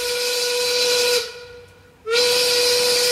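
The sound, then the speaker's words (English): A loud, steady steam whistle signalling quitting time blows with a harsh hiss, breaks off for about a second, then sounds again just as strongly. No one speaks. “We leave when the whistle goes, but not really on a Friday.”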